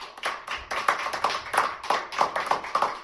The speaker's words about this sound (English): This is what I want to do, audience. By a show of applause, if you would, please.